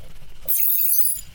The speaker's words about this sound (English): Shatter!